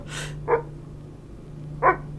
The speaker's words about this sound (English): You have a dog? Yes. My calico wash hound, Sir Meat.